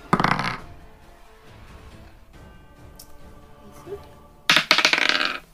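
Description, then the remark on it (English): Dice clatter across a hard tabletop in two short bursts of rapid clicking, one at the very start and another near the end, with a quiet lull between; a roll for an offense check that lands a natural 1. “Okay, I rolled a nat 1.”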